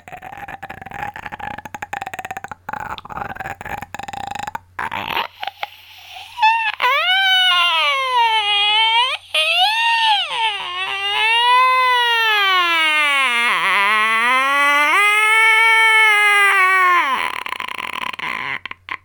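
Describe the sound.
A voice imitates a crocodile: a few seconds of rough, raspy buzzing, then a long, loud wailing groan that swoops up and down in pitch for about eleven seconds before stopping.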